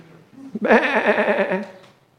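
A single sheep bleats loudly, a quavering, wavering cry lasting about a second, with faint low murmuring just before it and silence after.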